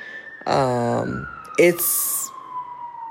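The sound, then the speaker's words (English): An emergency siren wails steadily in the background, its pitch slowly dropping as it passes on the street outside an apartment in Deep East Oakland, while a voice makes brief vocal sounds over it. “I know the sirens are going off right now, but like generally it's like a lot more quiet here on the street right here where I live.”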